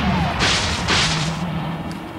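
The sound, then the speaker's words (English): Two sharp, hissing cannon blasts from Jackhammer in tank mode, firing at an airboat, follow each other within a second, bright and noisy, over a steady low mechanical hum that lingers after them. “Here we see Jackhammer transforming into tank mode, and it's blasts the airboat again, with Alex commenting that their ride home went up in smoke.”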